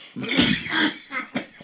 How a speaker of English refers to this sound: It is kind of it was making me cough. It's a hashy smoke. It really is. I didn't know if it was that or just the wrapper.